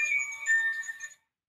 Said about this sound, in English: Sorry, my phone went off there.